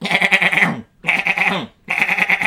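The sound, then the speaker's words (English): A voice imitates the goat gun, a weapon in Fortnite, with three loud, goat-like bleats in quick succession, each a wavering nasal burst separated by short silences, alone. “It sounds like a goat. That's my goat gun.”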